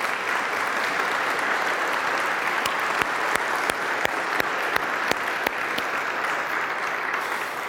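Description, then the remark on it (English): The audience of Holy Cross church applauds to thank those who serve up front and behind the scenes, a dense, steady wash of clapping that holds at an even level throughout, with a few sharper, louder claps landing in a rough rhythm through the middle. “So, church, can we just say thank you through our applause this morning?”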